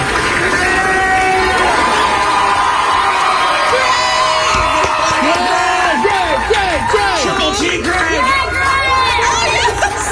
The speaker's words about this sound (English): The entire hospital staff, like, everybody walked out and cheered for him.